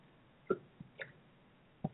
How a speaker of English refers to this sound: Just have to get the sip of water for myself since I yak.